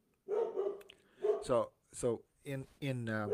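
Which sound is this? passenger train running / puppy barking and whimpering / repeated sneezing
puppy barking and whimpering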